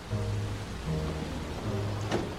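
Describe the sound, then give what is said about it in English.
A torrential downpour of rain in a Woody Allen film pours down in a steady, dense hiss, loud throughout, with a faint low droning tone running underneath. “The weather turns. They're caught in a torrential downpour”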